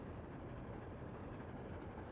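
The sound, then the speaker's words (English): Train wheels rolling and clacking on the tracks as a train carrying Elmo speeds up past fields and flower gardens, a steady, dense rumble heavy in the low end that continues evenly throughout, with no voices. “Elmo likes hearing the train wheels click clacking on the tracks.”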